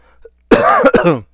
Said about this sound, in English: Excuse me for the cough. You know, it's the weather's changing out here. It's getting a little cold, so, you know, I got a little cough.